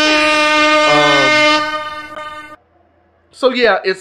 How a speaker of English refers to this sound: Let's go ahead and hit them with the air horns.